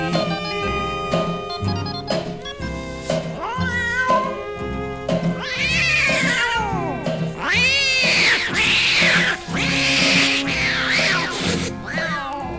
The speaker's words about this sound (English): Now on that very same night, now that old tomcat started a fight. And this is the way it all did sound to me.